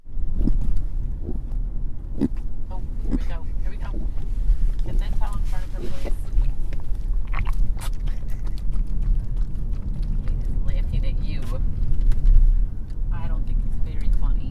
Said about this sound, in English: A vomiting puppy. Radio gold.